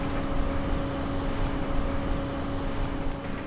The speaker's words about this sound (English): Soon, people from all over the area chimed in, saying that they too were hearing the loud hum.